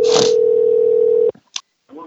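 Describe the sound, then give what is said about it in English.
A telephone call rings out, the line tone holding steady for just over a second, then cutting off into a few clicks before a voice briefly starts speaking. “I get butterflies every time we're sitting here waiting for it to ring.”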